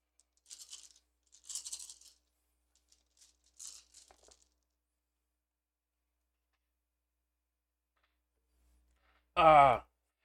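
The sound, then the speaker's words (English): Dice rattle and clatter across a surface in several quick, light bursts over a few seconds as too many dice are rolled for a dodge attempt in a game, followed by quiet and then a short, loud vocal exclamation near the end. “Oh, that's 1 too many dice.”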